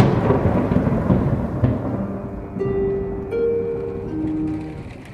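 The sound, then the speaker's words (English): Steady, dense rain hisses throughout under a deep rolling rumble of thunder, with faint sustained tones rising partway through; no one speaks. “I don't see why we had to meet here in the rain when we could have stayed dry at Harridge House.”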